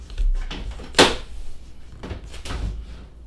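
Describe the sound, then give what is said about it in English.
A cabinet being opened, with low rumbling handling noise, one sharp wooden knock, then a couple of softer clunks and scrapes as the door moves. No one speaks. “We're opening up another cabinet.”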